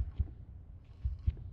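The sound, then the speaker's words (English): A muffled heartbeat thumps low and deep, its paired lub-dub beats repeating slowly over a faint, steady hum, with no voices present. “Oh, that sounds like a heartbeat. My heartbeat!”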